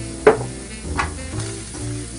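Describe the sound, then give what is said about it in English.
Whisked eggs sizzle steadily in a frying pan as salt is added, a constant crackling hiss with a few sharper bursts and light clinks of a utensil stirring. “So now that my eggs are in there, I'm going to add just a touch of salt, not too much, a little bit of black pepper.”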